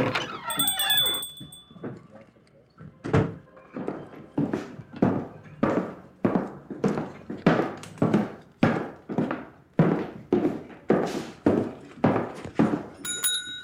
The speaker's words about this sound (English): Can we get the sound of a person walking into a shop and then the little bell on the door going ding ding ding? Okay. Okay, so that happens now.